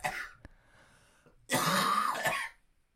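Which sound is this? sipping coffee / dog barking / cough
cough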